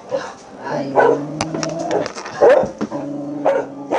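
Several dogs on a property holding around 90 dogs bark and yip in a crowded chorus, with whining and whimpering mixed between the overlapping barks throughout.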